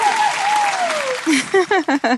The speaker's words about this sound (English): Please, a big, warm Bride Chilla round of applause for the budget savvy bride,